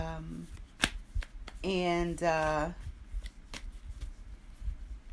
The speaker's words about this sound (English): I'm just shuffling the cards.